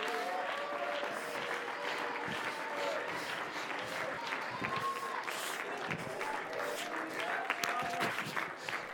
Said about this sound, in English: Somebody ought to clap your hands right now and shout.